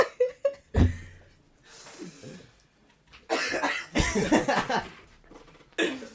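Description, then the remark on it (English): A producer, a man, coughs repeatedly in a series of harsh, wet bursts, some short and some drawn out, with brief pauses and strained breaths between fits. “That was a producer. He's dying.”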